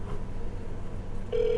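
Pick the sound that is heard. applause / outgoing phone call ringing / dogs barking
outgoing phone call ringing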